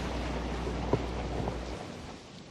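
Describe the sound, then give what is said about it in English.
Steady hiss of falling rain over a deep, continuous rumble of thunder, with a brief sharp crack partway through before the low rumble cuts away and the rain thins out. “This is some rainy day shit right here.”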